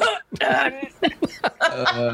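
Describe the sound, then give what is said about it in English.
A loud fake-sounding cough fit, several harsh bursts in quick succession, mixed with bits of laughter, as if someone is acting out a sudden coughing spell. “… just like coughs super loudly”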